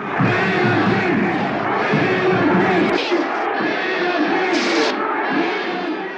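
A large stadium crowd at a football game chants for the prisoners in loud, rhythmic, low-pitched voices, a dense steady roar of many people that holds throughout with a few sharper shouts rising above it.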